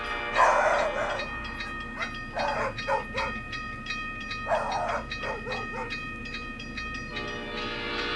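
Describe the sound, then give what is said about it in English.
Two pet dogs bark in a handful of short, irregular bursts at the end of a song, while a steady, sustained train whistle tone hums underneath throughout. “he ends this song with his dogs Banana and Louie making some pet sounds with them barking”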